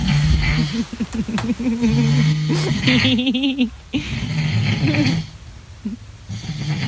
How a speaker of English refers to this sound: It's me snoring, everyone. It's me snoring.